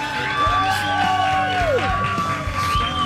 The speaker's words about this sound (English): We have Kevin Costner with us. For the people at the State Fair sitting in front of us, can you give a big cheer for Kevin Costner?